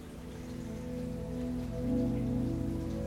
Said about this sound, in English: Look up, you can see the clouds ripe and full, and the rain pouring down. It's a cool welcome shower, and it feels as if every little raindrop has the power to heal and rejuvenate you.